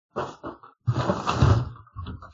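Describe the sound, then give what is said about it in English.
Cats fighting: a couple of short, harsh hisses and snarls, then a long, loud yowling screech, with a few scrappy cries trailing off at the end. “I hear a cat fight.”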